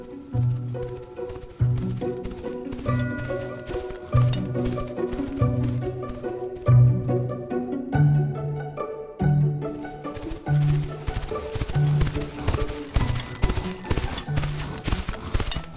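Reindeer hooves, including Donner, Dancer and Cupid, clip-clop in a steady, brisk trotting rhythm as a sleigh takes off, with light jingling bells and a tonal musical backdrop running under them for the whole stretch.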